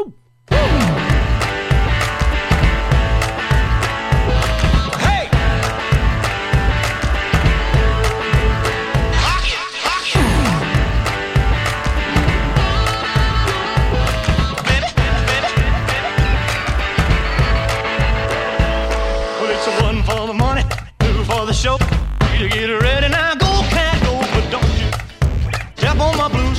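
A remixed 1950s rock and roll song plays loud and dense, with a driving steady beat, heavy percussive hits and bright guitar, continuous for the whole stretch with a brief drop near the end.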